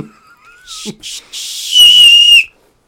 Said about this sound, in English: The trick, so you can whistle with your fingers. Show us. You do two guns. Yep. Put them together. Yep. You got to fold your tongue with your fingers and blow.